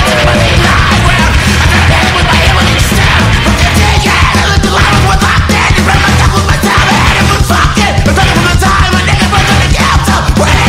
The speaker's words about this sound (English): The screaming through the static is the sickest thing I've heard in a minute. I'll send it to you guys if you want to sample it or something.